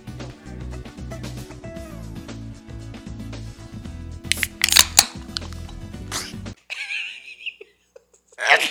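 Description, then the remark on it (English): A short, partly stifled sneeze bursts out in a couple of sharp, breathy puffs over a steady humming background, then the noise drops away to near quiet. “You kind of did sneeze there.”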